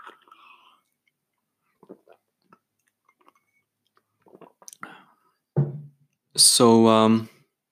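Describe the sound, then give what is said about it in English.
Quiet mouth sounds of someone sipping hot tea: faint slurps and small wet clicks, a soft swallow, then a loud, drawn-out voiced sigh of satisfaction. “Just want to take a sip of tea.”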